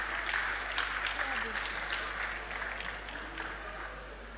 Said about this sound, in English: Up next is Action Songs by the Angel Class. Woo! Let's give it up for them. Applaud them.